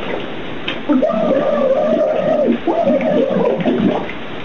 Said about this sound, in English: Notice the bubbles are slowing down. And she's out.